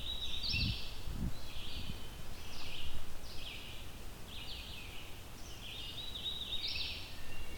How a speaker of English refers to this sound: As far as I can recall, this is one of those warblers that is not so friendly to people getting close to them. Probably why it's so hard to find them.